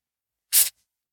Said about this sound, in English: So there's the Coke bottle opened. These are big, thick, heavy glass bottles.